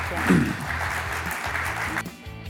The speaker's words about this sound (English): Applause for these ladies, if you will.